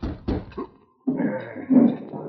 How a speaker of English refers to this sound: was just finishing his midday meal in his cabin on Keeno Creek when he heard a knock at the door.